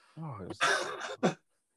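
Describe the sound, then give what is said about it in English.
A person clears their throat with a rough, voiced rasp, then gives a harsh cough and a short sharp second cough, with no words spoken. “I have to keep pausing my mic, so I keep going for a coughing fit.”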